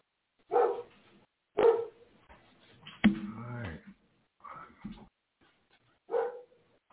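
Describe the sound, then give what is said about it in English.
A dog barks in a series of sharp, separate woofs, some drawn out into a whining, howl-like yowl, with no talking over it. “Yeah, my dog is calling me now.”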